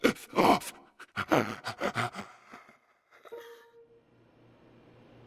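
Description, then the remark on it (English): A creature's gasping, groaning mumbles come in a run of ragged bursts, weakening and trailing off into near silence with a faint low hum left behind. “mumblings of the abhorrent thing trailed off into nothingness. Then came a halt in the gasping”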